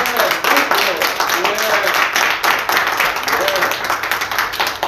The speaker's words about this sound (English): Okay, amen. Praise God. Let's give the Lord a hand clap and praise.